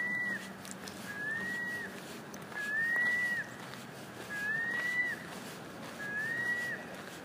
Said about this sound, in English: Oh, I don't know, maybe it's like a baby seagull or something? A mother seagull and her baby?